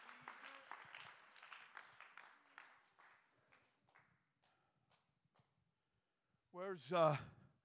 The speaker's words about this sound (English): Stand to your feet and clap your hands and lift your voice like a trumpet.